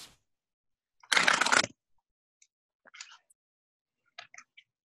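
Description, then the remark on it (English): A tarot card deck is riffled in one dense burst lasting about half a second, then a few softer scattered flicks and taps as the cards settle. No one speaks. “So I'll give it a few more shuffles.”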